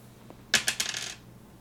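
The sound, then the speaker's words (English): Dice are rolled onto a hard tabletop for an unarmed attack, landing a natural 16, a quick burst of sharp clicks and rattles that settles within about half a second. Fairly loud, with no talking. “That dice. And then unarmed, natural 16.”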